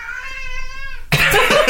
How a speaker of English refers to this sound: That was a mighty meow. That was like the mightiest meow I've ever heard. That was like a battle cry meow.